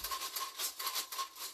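Window blinds being shaken, a rapid, repeated rattling of thin slats in quick bursts, bright and clattery, with no voices over it.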